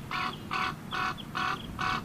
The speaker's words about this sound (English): Often confused with crows, ravens are larger, have a wedge-shaped tail with a low, throaty caw.